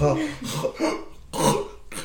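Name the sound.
repeated coughing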